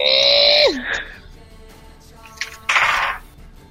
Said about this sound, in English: Okay, well, … gonna scream quite a bit. And just shoot an arrow. And be really mad.